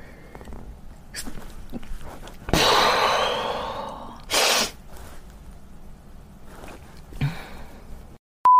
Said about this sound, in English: I'm gonna sneeze.